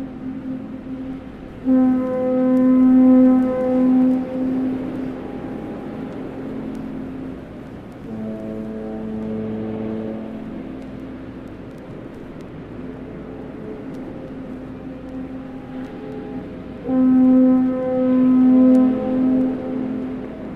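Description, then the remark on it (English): Deep, sustained foghorn blasts from the Golden Gate Bridge sound in long separated bursts across San Francisco Bay, one lower-pitched horn answering between them, carried over a steady wash of ambient rumble with no voices. “When I first moved to San Francisco, I became fascinated by how the foghorns from the Golden Gate Bridge could travel long distances around the bay.”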